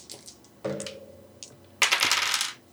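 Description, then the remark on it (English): Dice, including eight-sided dice, clatter onto a hard tabletop in a couple of bursts during a game, small hard objects rattling and tumbling, the second roll louder and longer before settling. No one speaks. “I rolled a D8 and I got an 8 on that one.”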